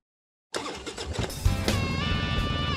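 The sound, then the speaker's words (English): After a short silence, a motorcycle engine abruptly starts up and rumbles loudly, then revs with a rising, steady whine, with no voices. “Kickstart that engine and roll thunder with the pack.”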